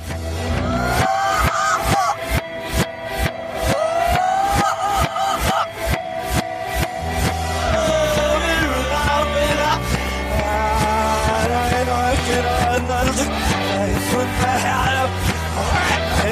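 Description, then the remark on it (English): A 1970s song played backwards, with steady pulsing drum hits, smeared swelling tones and warbling, garbled vocal-like sounds that rise and fade. Loud and dense throughout, with no talking over it. “Please tell me the artist and title of this song played backwards.”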